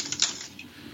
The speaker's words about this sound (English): Oh, I heard it, when you moved that piece of paper, you had a look on your face where you were about to issue a statement.